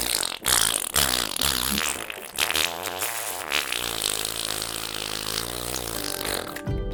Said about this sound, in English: The fart had beautifully harmonised with the opera singer. It was the most wondrous sound.